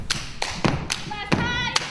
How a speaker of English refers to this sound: That's not hand boning. That's fucking black colleges. Stomp. That's stomping the yard. That's what that is.